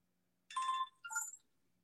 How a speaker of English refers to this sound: It's right now, it's ranked number, wait a second. You're going to watch me take a phone call. Wait, hello?